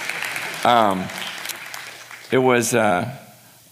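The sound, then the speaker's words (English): Audience applause, a steady, moderately loud wash of clapping with two short bursts of voiced cheering or whooping rising above it. “And I just, yeah, you can clap, I don't know.”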